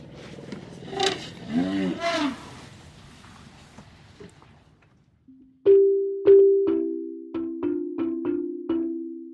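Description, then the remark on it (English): Elephant trumpeting and low rumbling calls for a few seconds, moderately loud, with rising and falling cries. A short run of plucked musical notes follows. “Kabete, Kenya, and a sound I love is elephant sound.”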